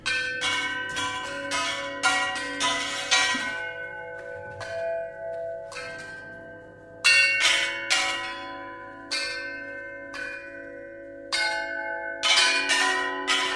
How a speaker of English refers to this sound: Some of the instruments in this unique orchestra were custom-made for the elephants, including a gong fashioned from a circular saw that had been confiscated from an illegal logging operation.